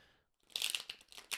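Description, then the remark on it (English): Tarot cards from the Tarot Obscura deck, created by Alex Burden, being shuffled: a soft, dry papery riffle of quick, irregular crinkling flicks that builds after a brief silence, with a sharper swish near the end. No one speaks. “Take a couple of nice deep breaths, and you can connect to the cards by listening into the sound of them being shuffled.”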